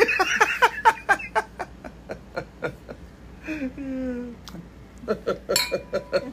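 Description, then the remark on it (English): Glasses clink together in a toast in a quick, steady run of bright taps, fairly loud, broken midway by a short tonal, voice-like sound before the clinking resumes. “Cheers to that, man.”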